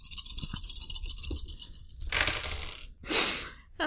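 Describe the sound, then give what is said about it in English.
Dice rattle and clatter across a hard tabletop in a few bright bursts as they are rolled for a charm check, with a steady tumbling rattle building to louder scattered clacks, a brief pause, then a final sharp burst. “I'm going to flip a light side point to knock up one of these dice.”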